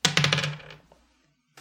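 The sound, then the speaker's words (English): A six-sided die (D6), rolled for a flaw, clatters across a hard surface in a quick flurry of bright rattling hits that slow and fade within about a second, followed by a faint tap. “Okay, throw me a D6 for a flaw.”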